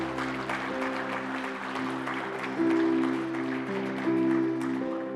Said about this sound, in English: Let's give these people a hand clap today, amen.